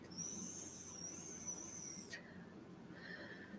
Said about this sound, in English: It's so funny. The pen makes such a funny noise, like a little whistle.